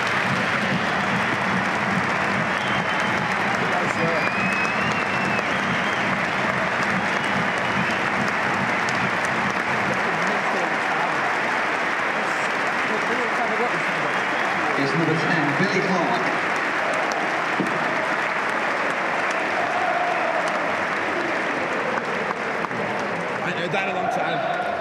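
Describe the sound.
Sustained audience applause, a dense, steady wash of many hands clapping at a loud, even level for the full stretch, with a few faint voices mixed into the noise.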